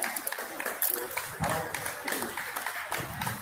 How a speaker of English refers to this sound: And they're clapping.